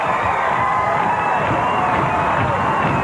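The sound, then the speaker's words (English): A large crowd at a professional wrestling match roars and cheers continuously in the arena, a dense wash of voices with scattered shouts and whoops, loud and sustained throughout without a break. “This tremendous crowd really getting into this one.”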